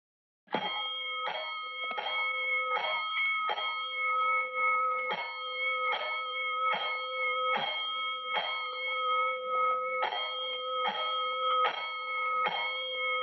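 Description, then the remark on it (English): A loud fire alarm bell clangs in a steady rhythm of quick strikes, falling into repeated groups of five with short pauses between sets, a five-bell fire alarm signal to all stations, ringing out alone with no voices. “Five bells. Stand by all stations.”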